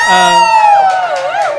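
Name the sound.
audience cheering and applauding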